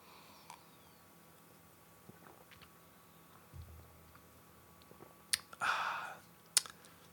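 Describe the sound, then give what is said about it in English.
Quiet clicks and light handling noises, then a short airy slurp of a sip of beer from a glass, framed by a couple of sharp taps, like the glass being lifted and set back down. “I'm going to have a sip of beer.”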